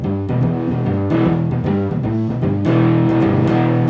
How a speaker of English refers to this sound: And it was called distortion, and that fuzzy sound.